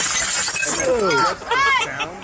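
Loud shattering of old single-pane window glass, a bright crash with scattered tinkling debris, followed by rising and falling vocal exclamations from people.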